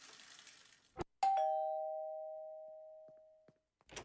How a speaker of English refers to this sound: I'm being a rascal and ringing people's doorbells and running away.